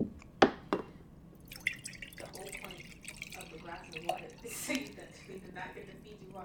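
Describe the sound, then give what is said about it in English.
Water pours and drips into a cup as someone gets a drink, preceded by a couple of sharp clinks of glass, with soft, indistinct voice sounds in the background. “Let me get some water because my mouth is a little dry.”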